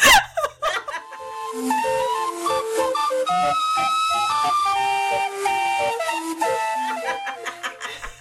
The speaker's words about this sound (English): I know I wrote something for this, but all this says is about 5 seconds of public domain calliope music?